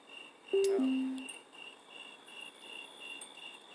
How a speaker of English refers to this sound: The crickets are out, man. It's at cricket time.